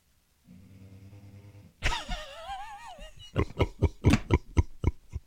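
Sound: dog snoring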